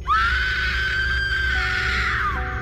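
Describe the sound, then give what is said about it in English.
A woman's shrill, high-pitched scream from right outside a campsite, heard from inside a tent, holds one long piercing note for about two seconds before dropping off, loud and close, with no talking around it. “I was still rolling around from side to side, uncomfortable, when I heard another woman scream.”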